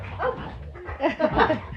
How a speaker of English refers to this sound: We have a puppy. And him and my dog are playing in here with us. And it's just so loud.